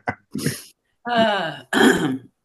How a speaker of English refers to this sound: we've got the dog, I'm coughing. That's fine. This is real life, people.